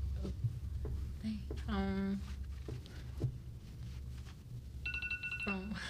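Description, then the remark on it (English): A phone alarm chimes in two short bursts of bright, melodic electronic tones, one early and one near the end, over a steady low background hum with faint murmuring voices. “Everybody put your phones on silent. It's time to wake up. Right. It's actually probably your practice alarm, isn't it?”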